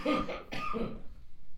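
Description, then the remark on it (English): A voiced sneeze in two quick bursts, a breathy, noisy intake sound followed by a sharper release, then quiet. No one speaks. “Bless you.”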